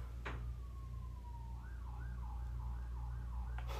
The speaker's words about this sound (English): I hope you guys can hear the sirens. I feel like they probably can't.